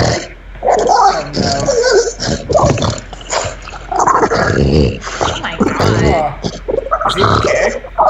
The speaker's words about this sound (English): Really? Did you hear that noise? Is anybody listening? That's my dog makes that noise. Why?